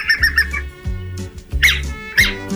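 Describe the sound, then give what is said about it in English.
An elf owl (Microthene whitneyi) gives rapid, high squeaky yelps in several quick bursts, clear, with a low steady hum running underneath. “The tiny, bow-legged, scorpion-eating, dead-playing elf owl, Microthene whitneyi, today's Talkin' Birds featured feathered friend.”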